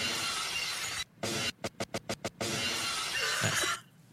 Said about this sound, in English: Give me the Stone Cold glass break.